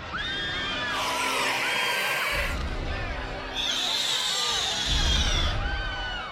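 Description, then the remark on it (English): A crowd of people screaming in two loud, frantic bursts, shrill overlapping voices swelling together with a brief dip in between, sounding chaotic. “The humans were screaming again.”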